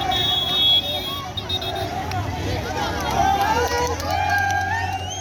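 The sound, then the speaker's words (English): A crowd celebrates in Ethiopia's northern Tigray region after rebels retook its capital, Mekele, with dense overlapping voices and many rising, wavering high-pitched shouts and calls held at a steady, loud level throughout. “Here's a crowd celebrating.”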